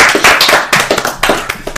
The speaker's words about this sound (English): Let's clap it up